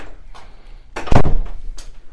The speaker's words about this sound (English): You can shut that door and then that'll make it so.